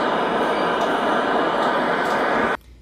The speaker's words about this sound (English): He couldn't believe what he saw and heard as he went. Subway trains rumbling by overhead.